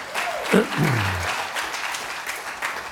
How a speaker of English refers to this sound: Give the Lord a clap offering right there.